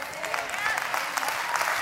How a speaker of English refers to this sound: Yeah, you need to applaud.